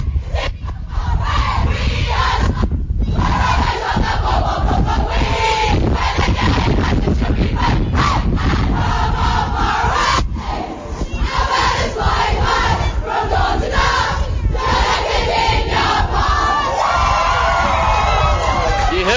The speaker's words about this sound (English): But as they go inside the rooms now, we're going to hear the famous lyrics of We Are Geelong, and then hopefully we'll get our player of the day as well.